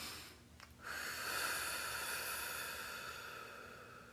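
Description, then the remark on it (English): A single long, slow, deep breath, a soft airy hiss swelling after a brief pause and fading gradually over several seconds, with no talking. “But if you just take a moment and sit back, and say, hold on, let me breathe. Because breathing is a part of the process. Let me breathe.”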